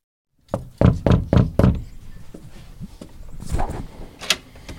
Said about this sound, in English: Here we are. We're at Matt Gourley's house. We're about to go up and knock on the door.